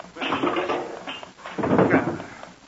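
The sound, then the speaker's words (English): A drawer slides open with a scraping rattle, followed by a second burst of clattering as a ticking clock is pulled out from inside. Fairly loud, with no voices. “I take it out of that drawer.”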